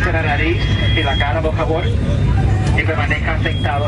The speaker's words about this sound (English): A terrifying mid-air scare. Evacuate! Passengers screaming as smoke fills the cabin inside a Southwest Airlines plane. People on board using overhead oxygen masks that drop down.